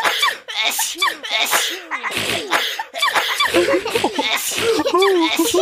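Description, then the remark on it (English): A voice acts out a cartoonish sneeze by Mrs. Elephant, an elephant character wearing a trunk mask: breathy, squeaky build-up sounds leading to several sharp, explosive bursts, loud, with giggly vocal noises mixed in. “We really need to cover our coughs and sneezes.”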